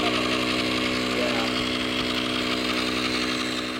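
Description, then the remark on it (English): A small electric pump drones steadily as volunteer scientists and a teacher inflate a small pontoon boat at the Salton Sea on a 112-degree day, a continuous, fairly loud mechanical whir with a buzzing hum that holds even and unbroken from start to finish. “A couple of volunteer scientists and a teacher from our old high school, Desert Mirage, they're pumping up a small pontoon boat.”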